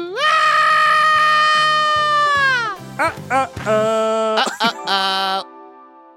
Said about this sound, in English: A lot of screaming this week. Can I hear it? Give us a good scream.